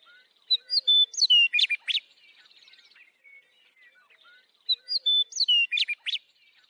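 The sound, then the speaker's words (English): A songbird in southeastern Pennsylvania sings two bright, quick phrases of whistles and trills, separated by a few seconds of quiet, clear with no voices present. “This is Holly Merker, and today the Joy of Birdsong segment is coming to you from southeastern Pennsylvania.”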